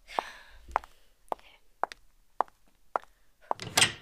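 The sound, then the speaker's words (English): Seven steady, evenly spaced knocks on a door, followed by a brief breathy rush of noise at the end. “But the next thing I know, someone's knocking on my door.”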